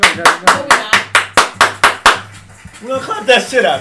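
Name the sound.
hand clapping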